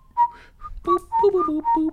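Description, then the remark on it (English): A person whistles a short, wavering melody, several sustained notes sliding between pitches over a couple of seconds, with no talking. “Sorry, can't get those notes exactly right when whistling.”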